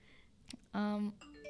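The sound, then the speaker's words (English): A single short notification chime rings out, a steady bright tone with rich overtones lasting under half a second, loud against faint background noise, followed by a softer ringing tail. “Oh, that's a fun little notification.”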